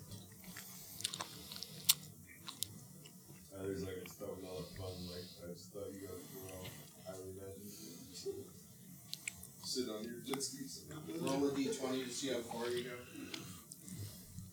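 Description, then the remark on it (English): Chewing of food, with wet, crunchy bites and clicks repeating irregularly over several seconds while muffled voices murmur and hum in between. “I swallowed. Can I get another one of these for later?”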